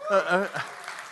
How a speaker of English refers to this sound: I saw a few people clapping like this, you know. And so just give praise to Jesus, man. It was a good time.